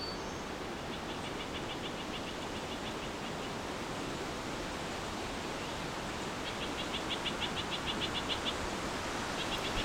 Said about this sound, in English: I believe it's a white-breast nuthatch. Doing a rapid squawking.